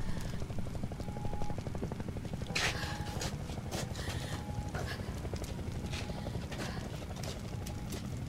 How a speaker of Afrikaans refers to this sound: Hoor jy die helikopter, Anna?